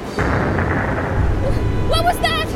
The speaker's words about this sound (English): Explosion busted apart the ice jam before it could melt. Now these giant ice flow chunks are crashing together in this torrent.